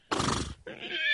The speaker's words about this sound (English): I have horse noises today.